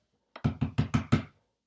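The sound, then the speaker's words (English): A quick series of five firm knocks on a wooden front door, evenly spaced, with a light tap just before them and silence afterward. “Yeah, come in, it's unlocked.”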